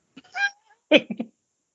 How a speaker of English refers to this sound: Meow. Cat. Meow. We have three.